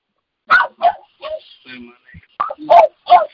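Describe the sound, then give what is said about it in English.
A dog lets out a series of short barks mixed with high whimpering yelps while a person corners it and it tries to get away, the sounds coming in quick uneven bursts with brief pauses between them. “leave that dog alone, bitch.”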